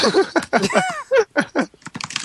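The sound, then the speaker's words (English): Quick bursts of keyboard-like tapping and clicking, fairly loud, mixed with mouthy voiced sounds, as if a person were imitating typing; the clicks turn rapid and sharp near the end. “Typing during a podcast.”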